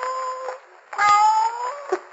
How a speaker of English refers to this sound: I think... What was that? It sounded like a cat. It came from that wine vat.